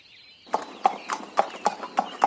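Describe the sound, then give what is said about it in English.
The hooves of a five-year-old horse at the Coolmore Stud Farm in Ireland clip-clop in a steady, even rhythm, about eight sharp knocks in quick succession on a hard surface, moderately loud, with no talking. “Anyway, I went down to the Coolmore Stud Farm in Horseland, sorry, Ireland, to talk to the five-year-old horse Thario.”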